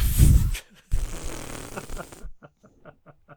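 A balloon is blown up in two strong puffs of breath, the second longer with a rubbery, buzzing flutter. Faint, brief talking follows.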